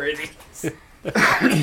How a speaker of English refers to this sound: Oh, my gosh. Coughing. Maybe we'll edit the coughing out.